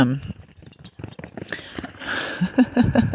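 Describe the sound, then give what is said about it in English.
A dog runs around playing in mud and puddles after a night of rain, making quick, irregular squelching and padding footfalls with scattered clicks and jingles. A few short muffled vocal sounds come near the end. “that's my dog, in case you're wondering what that was.”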